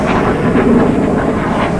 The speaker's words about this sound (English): Oh, actually, those are fighter jets. Those aren't airplanes. Jeez. Those are fighter jets. That's why they're so loud.